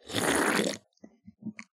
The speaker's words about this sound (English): that was a Hams Sky Blue sip, and I would like to hashtag dedicate that Sky Blue sip to a couple of my fans on Twitter.